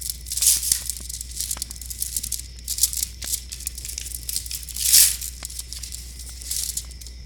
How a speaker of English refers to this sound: What I'm ripping open is one of these envelopes with a window pane, like the little plastic window in it.